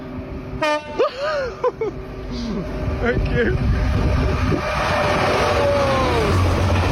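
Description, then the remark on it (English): An engineering train on a railway approaches and sounds a loud two-tone horn in short blasts, then its rumbling, rushing noise builds steadily and stays loud as it passes by. A person speaks briefly early on. “Here comes one of the coolest things to see on the railway, an engineering train.”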